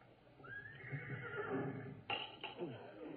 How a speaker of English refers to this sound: It's funny, there it is again. And it did sound like a horse. Like it was right outside the house, in fact. Now, how could I hear a horse? Good grief. There is a horse out there. Two horses. Right on our front lawn.